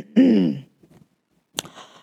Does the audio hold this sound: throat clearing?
yes